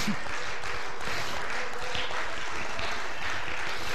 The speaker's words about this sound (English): Come on, somebody clap your hands in this place.